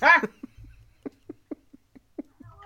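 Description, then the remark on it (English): Dogs barking: one loud, sharp bark at the start, then a string of faint, short yips or taps spaced unevenly, fairly quiet. “Let me shut these damn dogs up.”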